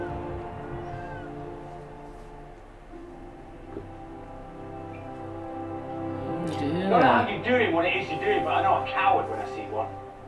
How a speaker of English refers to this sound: Yeah, a cat!